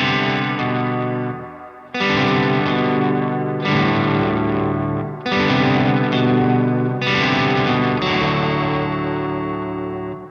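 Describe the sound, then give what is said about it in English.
Electric guitar chords played through an H9 effects pedal with hall reverb and delay ring out in long, washed-out swells, each strum blooming with spacious reverb and delay trails that blur into the next. Five loud, sustained strums, no voices. “A little other delay, like this hall reverb.”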